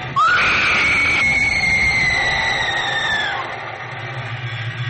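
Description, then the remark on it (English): Aircraft bomb hatch doors grind open with a loud, rising metallic screech that holds steady for about three seconds before fading, over a low engine-like rumble. “The bomb hatch doors. Duffy's opening them.”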